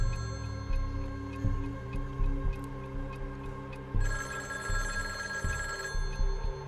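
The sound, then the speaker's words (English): A telephone rings continuously with a steady, buzzing electronic tone, swelling brighter and louder for a couple of seconds near the end. The ringing is clear, with no voices. “I'm sorry, passenger, that phone's not for you.”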